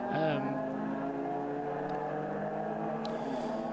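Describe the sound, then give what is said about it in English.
A race car engine whines steadily and loudly as it passes on a race track, its buzzing harmonic drone dipping slightly in pitch at the start, then holding constant with no talking. “we therefore now wait to see who comes through, or if those two get out before the next car comes through.”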